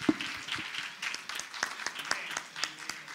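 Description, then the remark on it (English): An audience at a church service breaks into applause, giving the Lord a big cheer, dense clapping with scattered sharp claps and some cheering voices mixed in, sustained at a fairly steady level throughout. “Let's give the Lord a big cheer, and you can be seated.”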